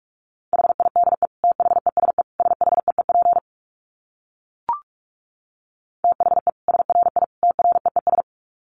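Rapid Morse code beeps at 45 words per minute in a steady mid-pitched tone, keyed in quick dots and dashes, two bursts of sending separated by a pause with a brief click in between.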